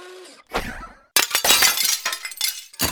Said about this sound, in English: The team then tried throwing another pane of glass into the window, which seems like the most plausible option yet for creating a crescendo of windows smashing.